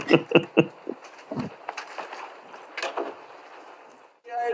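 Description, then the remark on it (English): A door is opened: a quick series of sharp latch clicks and knocks, then a stretch of scraping, rustling movement, with a voice briefly starting up at the very end. “Open the door, man.”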